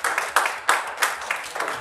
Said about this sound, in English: I got two amens and a bunch of hand claps.